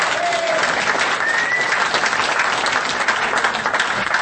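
A crowd applauds steadily, a dense wash of many hands clapping at an even, fairly loud level throughout, with no individual claps standing out and no talking over it.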